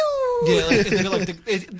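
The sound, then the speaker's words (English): A voice imitates a modified diesel truck, starting with a falling whine and moving into rough, wavering revving sounds that bend up and down in pitch over about two seconds. “It's mainly the Japanese trucks that sound like that.”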